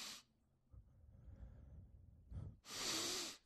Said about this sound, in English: And then I do 30 of these like Wim Hof style breathing things where I take a deep inhale, like, through the nose, though. It's hard to inhale. And then naturally let it just fall out of your chest because it creates a vacuum.